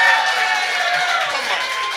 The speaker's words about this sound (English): We did it. That was a louder cheer.